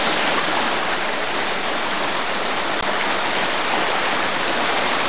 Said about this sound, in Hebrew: אנחנו רואים שממש נוצר מפל.